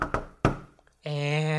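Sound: knock on a door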